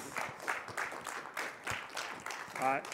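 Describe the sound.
A steady round of applause from a small group, dense and continuous for a few seconds, with a brief voice cutting in near the end.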